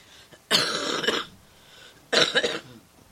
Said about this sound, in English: I can't. Ever since the flu, I still can't get rid of this cough. I think I have to go to the doctor.